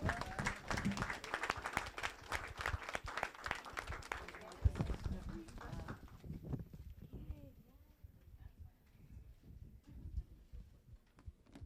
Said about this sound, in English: Okay, please, a round of applause for our talented students.